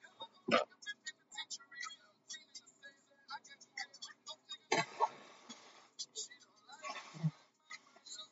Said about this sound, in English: Hold on, I gotta blow my nose.